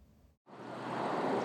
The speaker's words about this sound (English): The raging waters have driven piles of trash and debris down the river's path.